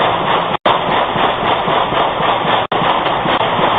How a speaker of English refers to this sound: You can hear at least 15 shots fired in seconds.